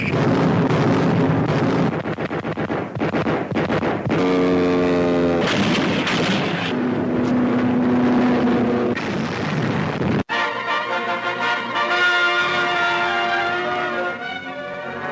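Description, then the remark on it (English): U.S. Navy and Marine warplanes roar overhead, attacking a Japanese invasion fleet at the Battle of Midway amid a loud, dense barrage of anti-aircraft fire and explosions, booms piling up continuously with droning engine tones, briefly cutting off before the din resumes. No one speaks. “U.S. planes roaring to the attack amid a rain of anti-aircraft fire.”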